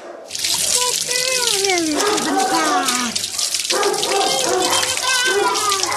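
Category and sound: household object, water running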